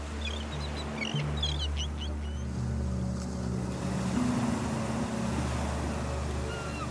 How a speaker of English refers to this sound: Look out at the waves and the sea, and see the beach you are slowly headed towards, off in the distance. Hear the calls of the seabirds, and hear the waves gently lapping against the ship.